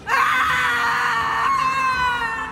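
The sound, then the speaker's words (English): A sustained, anguished ghostly shriek wails loudly for over two seconds, its piercing high tone wavering and sliding slightly downward without a break. No one speaks. “My mouth unhinges and the wind rushes from me, a gale force of hollow despair. I shriek.”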